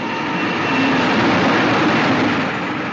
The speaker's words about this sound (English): And what happens at the moment they kiss? The express train goes by.